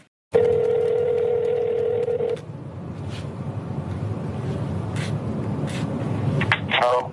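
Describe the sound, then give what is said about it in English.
A steady telephone dial tone hums for about two seconds over a noisy line at the start of a recorded phone call to a governor, then cuts off, leaving rumbling background hiss with a few short beeps and clicks near the end. “This is a phone call that was submitted as evidence by the attorney general, and it's part of the report.”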